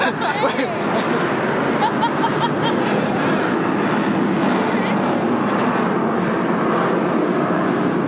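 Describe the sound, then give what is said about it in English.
A loud, continuous roar of jet aircraft flying overhead fills the whole stretch, steady, with a murmur of crowd chatter beneath it. “And you might hear in the background the jets. Here come the jets.”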